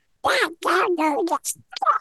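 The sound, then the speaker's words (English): A person imitates Donald Duck's garbled, raspy quacking speech in a few quick bursts, fairly loud, with no clear words. “I can't even say it. My Donald's horrible.”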